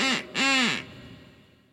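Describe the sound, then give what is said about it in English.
Two loud, nasal duck quacks in quick succession, sharp, from a blown duck whistle, followed by a faint fading tail of room noise. “They backed me up and they would be a duck whistle.”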